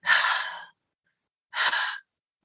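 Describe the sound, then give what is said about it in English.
A voice imitates heavy breathing: two loud, breathy exhales or sighs, each about half a second long, separated by a short silence, alone with no talking. “And they can hear this breathing.”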